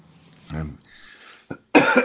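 A few coughs in quick succession, including a short sharp burst and a louder raspy one at the end, with some throaty breath noise between them.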